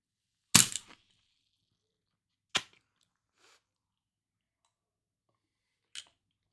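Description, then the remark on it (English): A sharp pop as a marble is pushed into a soda bottle, followed by a brief fizzing hiss, then two more isolated clicks spaced seconds apart in otherwise quiet surroundings. “So set that there and it's kind of like it will fizz a little bit probably, but then you just.”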